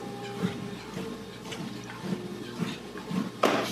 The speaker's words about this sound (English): Just take a water break here.